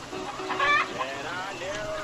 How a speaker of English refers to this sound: Got them nice, long-legged, Rhode Island Red chickens. Rhode Island Red? Yeah, them. Oh, nice. I like them.